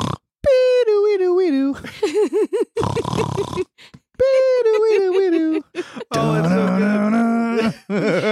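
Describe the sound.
A voice imitates a friend snoring as if snoring a song, alternating loud, wavering hummed notes that slide in pitch with rough, raspy snort-like bursts, over about eight seconds with no other sounds.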